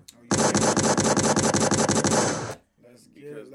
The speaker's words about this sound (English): Let's get some gunshots, man.